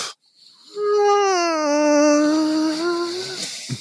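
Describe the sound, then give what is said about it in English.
A person imitates a little cat's closed-mouth sighing noise, made by sucking all the air in: one long, wavering nasal whine held for nearly three seconds, moderately loud, followed by a short breathy puff. “And then she makes this noise, mouth closed, just this little like sigh noise where she like sucks all the air in and goes.”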